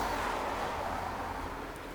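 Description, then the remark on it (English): A single car passes along a small road by a reservoir at night, its steady tire hiss and engine rumble slowly easing off as it moves away. No one speaks. “One lonely car passing on the little road here.”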